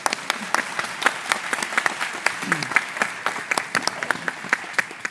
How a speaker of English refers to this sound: and you could all break into applause. We'll see how that works. Well, what I'm going to do now, when this great evening is written down for posterity, this will be the point where there's a square bracket that says applause. So join me.